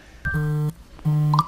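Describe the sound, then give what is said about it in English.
Two phone notification beeps as congratulation texts arrive, each lasting about half a second with a brief pause between them. They have a buzzy, low tone with a faint higher ring, and play fairly loudly with no talking. “My phone is blowing up right now.”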